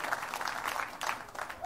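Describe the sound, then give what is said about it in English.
A church audience gives a clap offering of praise, with steady, dense clapping at moderate volume, a few voices cheering faintly underneath and a brief rising whoop near the end. “Give our King and give our Lord a great big clap offering of praise.”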